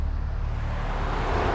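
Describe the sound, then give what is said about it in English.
A steady low rumble of road traffic, a continuous wash of engine and tire noise that swells slightly toward the end, with no voices. “Look at the traffic.”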